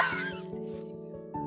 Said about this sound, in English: What the hell? I hear my dog, like, dying.